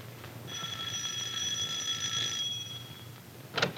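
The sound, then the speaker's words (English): A doorbell rings in one steady, bright, buzzing tone lasting about two seconds over a low background hum. No one speaks, and a short clatter follows a moment later. “Oh, excuse me. There's someone at the door.”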